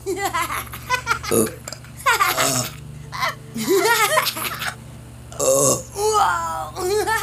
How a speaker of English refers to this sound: A few minutes later, the boys were laughing and burping on cue.